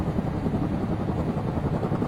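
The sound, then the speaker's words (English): A helicopter roars very close overhead around 9 o'clock at night during an attack, its dense, continuous rotor thrum loud and steady throughout, with heavy low-end chopping and no voices present. “The chopper's very close this time.”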